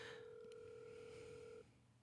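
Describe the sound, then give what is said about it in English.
A telephone ringback tone on an outgoing call: a single steady electronic purr held for about a second and a half, then cutting off into quiet line hiss. No one speaks. “Is it ringing? Yeah, it's ringing right now.”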